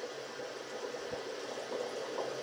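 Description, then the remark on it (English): A steady, dense fizz of air bubbles churning continuously through water as air is pumped in during a buoyancy demonstration with a ball floating in the fluid, with no voices and no breaks in the bubbling. “As I increase the amount of bubbles, the ball will sit deeper in the fluid.”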